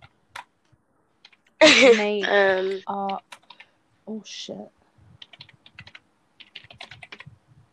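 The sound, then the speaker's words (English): Quick, irregular key clicks of someone typing on a laptop keyboard to spell out a word, soft, with a short burst of voiced sound near the start and then a steadier patter of taps. “Are you typing in your laptop?”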